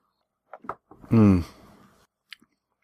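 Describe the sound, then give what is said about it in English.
Someone sips a dry IPA beer from a glass: a few small wet mouth clicks, a short satisfied voiced exhale, then two faint lip smacks in otherwise quiet surroundings. “Let me take a sip and I'll try to pinpoint some more.”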